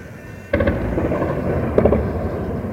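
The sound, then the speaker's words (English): A sudden heavy blast sets off a long, rolling rumble, with a second sharp crack partway through, like explosions and gunfire echoing across Kiev's residential and government districts as Russian forces move on the capital. No one speaks. “the Defense Ministry said that Russian forces were moving on Kiev, with reports of gunfire in the capital's residential and government districts.”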